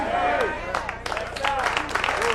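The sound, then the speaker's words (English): An audience claps in scattered, uneven bursts, with a voice or crowd noise rising over the applause. “Oh, I'm looking to see who's not clapping.”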